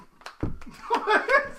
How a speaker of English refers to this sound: Stop hitting the table.